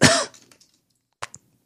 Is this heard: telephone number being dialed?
no